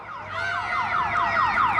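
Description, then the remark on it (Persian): A car alarm blares with a rapid, repeating electronic wail, its pitch sweeping down over and over in quick cycles, loud and steady with no voices. It is set off by several young boys tampering with a car in an alley of cramped houses in the south of the city. “کوچه عباس با شنیدن صدای دزدگیر با عجله از حیاط بیرون می آید.”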